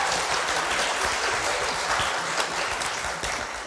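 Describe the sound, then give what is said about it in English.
A church audience claps steadily for several seconds, applauding the kids who led the service at Word of Grace Church, a dense, even wash of hand claps with no voices rising above it. “I just want to start with, let's do one more round of applause for the kids because they did great today.”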